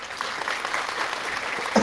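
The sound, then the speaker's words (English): Steady, dense clapping fills the whole moment, a crackly wash of many quick claps at an even loudness, with a brief voiced sound popping up right at the end. “Can you hear the clapping?”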